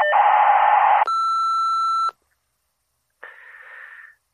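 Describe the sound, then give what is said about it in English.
A steady, one-second answering machine beep comes right after a loud burst of hiss, then a pause and a shorter, softer crackle of static. “Leave a message at the beep and I'll”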